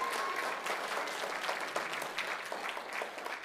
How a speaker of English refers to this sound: How many of you, by applause, prefer the Thanksgiving dinner? All right.